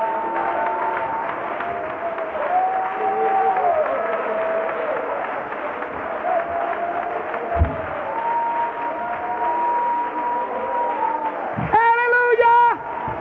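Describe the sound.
An audience claps their hands to the Lord steadily for about thirteen seconds, the dense applause holding at an even level while scattered voices call out, ending with a loud, high cheer near the close.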